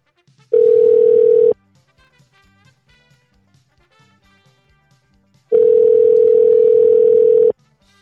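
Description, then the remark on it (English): A loud phone ringback tone while calling a man: two long, steady buzzing rings, each about a second or two, separated by several seconds of near-silence with faint background sound. “Let's see if he'll answer the phone. Come on, Jarvis.”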